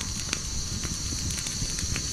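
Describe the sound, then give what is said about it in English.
A campfire crackles steadily, with scattered sharp pops and snaps over a constant low rumbling hiss, moderately loud, with no voices. “It's also a campfire.”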